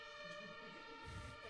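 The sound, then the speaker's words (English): Faint emergency sirens wail as a steady tonal drone with layered pitches, low and continuous throughout, with some rumbling background noise and no talking. “You hear those sirens?”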